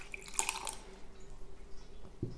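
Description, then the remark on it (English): Sweet vermouth, about 40 ml, is poured briefly into a Collins glass with ice cubes for a drink with Campari: a quick quiet trickle and splash followed by a few drips, then a soft low thud near the end. Fairly faint, with no talking. “And the same amount of sweet vermouth.”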